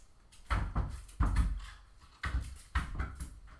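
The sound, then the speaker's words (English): Irregular bumps and rattling thuds against a door, about five knocks over a few seconds, muffled and fairly quiet, with no voices: a cat punching at the door from the other side. “Sorry, my cat's going ham. I hear him. It's easy punching your doors.”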